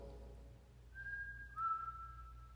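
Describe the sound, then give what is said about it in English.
A person whistles two sustained, steady notes, the second slightly lower, clear over a low background hum, with no talking. “If you're going to do that, can you make your presence known more clearly? Can you whistle?”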